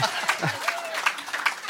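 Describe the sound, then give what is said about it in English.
Light, polite applause from the audience of Guy Talk Live at Door Creek Church in Madison, Wisconsin: a steady, fairly soft patter of claps throughout, with a brief murmur of voice at the very start. “That's usually an applause break, but that's all.”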